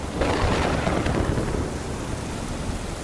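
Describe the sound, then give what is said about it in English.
A thunderstorm roars steadily over a rocking boat in the middle of the storm, with dense, heavy rain hissing over a deep, continuous rumble of thunder as waves crash onto the deck. The sound is loud, filling the whole three seconds with no voices. “I went upstairs, and to my horror, a storm raged.”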